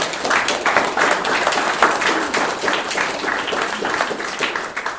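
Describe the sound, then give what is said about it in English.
A crowd gives God a hand clap, many hands clapping in a dense, steady patter at fairly loud volume for the full five seconds, with no voices rising above it. “Can we give God a hand clap in this position?”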